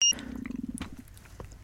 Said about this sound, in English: Did that come on the mic? Tommy, Jonathan. It was. Excellent. That's going in the outtakes. Cat pooing in the studio.